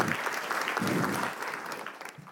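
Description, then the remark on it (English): An audience at an evening Christmas service claps together to thank the musicians, the choir and the band, in steady, dense applause that holds strong for a couple of seconds, then thins and fades toward the end. “And how wonderful are our musicians this evening? Why don't we thank them?”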